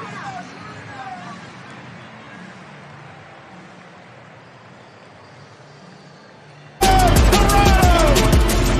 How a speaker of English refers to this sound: Loudest cheer of the night as she leaves Arthur Ashe Stadium for what should be the last time.